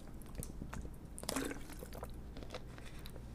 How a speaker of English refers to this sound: I'm gonna drink another sip of water here.